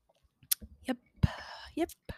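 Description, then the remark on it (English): Quiet sips from a glass of mini chocolate martini, shaken with chocolate syrup and Godiva chocolate liqueur, taken right after a toast: a short airy slurp surrounded by soft lip smacks, wet mouth clicks and a faint swallow, with no talking. “So take a sip. Okay, here we go. Cheers.”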